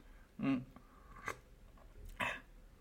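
Three brief slurping sips of hot coffee, spaced about a second apart, with a soft swallow between them.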